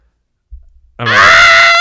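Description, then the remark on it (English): A person lets out a loud, strained scream imitating pain, rising sharply after a brief low rumble and holding at full intensity for nearly a second. “I just kind of screamed. I just kind of yelped.”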